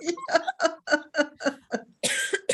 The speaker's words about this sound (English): Excuse me. Oh my gosh. I'm laughing too hard. I'm coughing now.